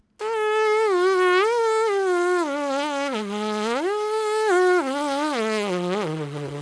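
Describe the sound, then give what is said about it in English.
A continuous buzzing of a trumpet player's lips without a mouthpiece, wavering up and down in pitch for several seconds; loud and nasal, resembling an insect drone. “now you put the mouthpiece onto those buzzing lips”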